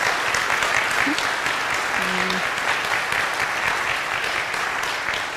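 An audience claps steadily for several seconds, applauding a woman for her service, a dense, even wash of many hands at a fairly loud level with no clear rhythm, fading slightly at the end.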